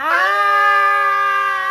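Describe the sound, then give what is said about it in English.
A voice lets out a single sustained, high-pitched scream-like cry, imitating a little girl screaming as she runs after a crab pinches her hand at a tide pool. It holds steady and loud for under two seconds with no other sounds. “She's running, she's running, screaming.”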